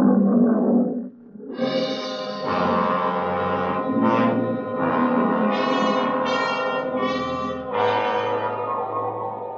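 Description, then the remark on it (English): An old lion roars loudly, a long, rumbling call that swells into a series of sustained, gravelly groans running almost without pause to the end, with no voices present. “Nobody answered me but an old Liban lion.”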